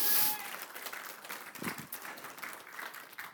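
An audience claps steadily as a woman makes her way to the front, a dense patter of many hands at moderate loudness, with no one speaking over it.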